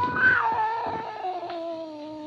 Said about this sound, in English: Slowly, it moved out into my line of vision. It was a cat. That scrawny cat, Clara, that Mother Willis had sneaked aboard in La Guayra.